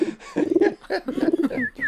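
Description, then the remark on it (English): A person imitates a pigeon's cooing, performed live in a studio: several throaty, low warbling coos in quick succession, fairly loud, with a couple of short rising squeaks near the end. “And it was all done live here in the studio with We have our own parrot. We have a pigeon.”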